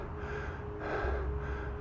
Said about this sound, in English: Oh, there's the horse.